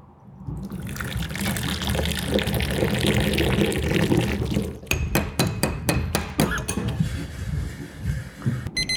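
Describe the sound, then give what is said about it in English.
Hot water for warming spoons pours steadily and fairly loudly for about four seconds, followed by a run of sharp, quick clinks, like spoons tapping against a glass or cup. “Perhaps we should have some hot water to warm our spoons with.”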